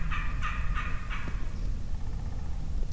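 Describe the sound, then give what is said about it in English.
An Osceola wild turkey from a group of turkeys gobbles, a quick rattling burst of four or five pulses in the first second, then only a steady low outdoor rumble remains. “All right, we'll set up on another group of turkeys.”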